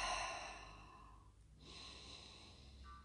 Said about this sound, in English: So let's just start by taking a deep breath.